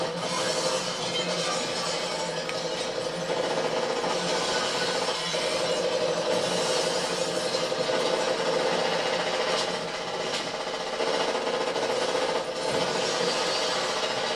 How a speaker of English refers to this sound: A lot of bullets wasted on glass. Yeah, I'm just surprised that like none of these bullets are ricocheting. Yeah, they've clean in and out.